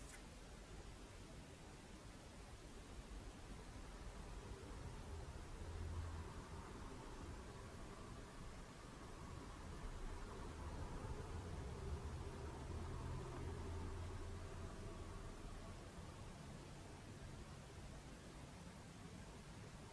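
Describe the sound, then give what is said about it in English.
A faint, steady wash of traffic, with a low rumble that swells gently a couple of times as cars pass. No one speaks. “Can even appreciate how the cars are not only surrounded by peace, they are actually in the nature of peace.”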